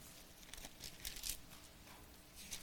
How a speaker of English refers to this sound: Yeah, 1 Kings 5:17. I hear some pages turn, and I got verse 17,